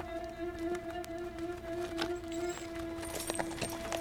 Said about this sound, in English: The sound of horse hooves and insects and the wheels of the stagecoach and the chatter of people linger.